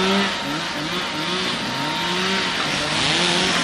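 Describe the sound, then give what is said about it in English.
Chainsaws run steadily throughout as people clear storm debris at a Shenandoah intersection after a December storm, their buzzing engine whine wavering and rising in pitch over a loud, rough wash of noise, with no voices. “The sound of chainsaws operated by individuals trying to clear debris at a block Shenandoah intersection, drowning out a nearby church bell's playing of Jingle Bells.”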